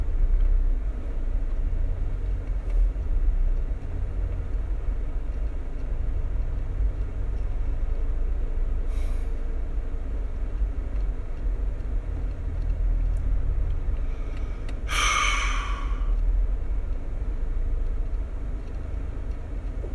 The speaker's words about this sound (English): Traffic.